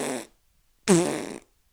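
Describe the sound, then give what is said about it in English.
A voice imitates a fart with two blown raspberry bursts: a short one, a brief silence, then a longer, louder, buzzy sputter lasting about half a second, alone. “And as he's doing that, he's making a fart noise. And we're talking like a full-on fart.”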